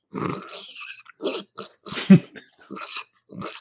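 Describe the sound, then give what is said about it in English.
A person imitates a startled pig with a string of short, harsh, breathy grunts and snorts in an uneven rhythm, the loudest squealing one landing in the middle, with no speech. “Here's a pig in surprise.”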